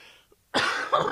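A single harsh cough from a lingering cough bursts out after a brief near-silence, with a second rough push near the end, nobody talking.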